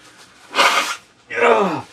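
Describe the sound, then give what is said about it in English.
A person blowing their nose in two bursts: a short, breathy rush of air, then a longer, wet honk that slides downward in pitch before tapering off. “Oh, God, just blowing my nose.”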